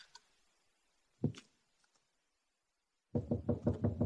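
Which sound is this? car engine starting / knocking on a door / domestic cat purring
knocking on a door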